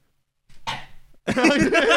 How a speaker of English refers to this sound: Yeah, you're going to hear me like do the little like boomer cough. Like, dude, the iPad kid cough where you're like. Yeah, I do do that a lot, especially when I'm gaming.